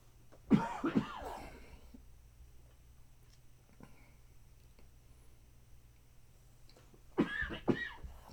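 Two loud bursts of coughing separated by several seconds of near silence, each a quick cluster of harsh, raspy coughs with a low background hum.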